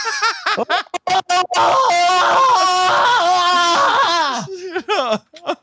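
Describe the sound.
A voice imitates the shrill screech of a Lady Guard personal alarm device, a loud sustained wail with a wobbling pitch lasting a few seconds, bracketed by short vocal bursts at the start and end.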